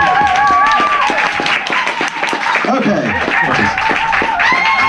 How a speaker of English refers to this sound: Should we just give him another big round of applause, make him feel a bit better? Shall we? Thank you.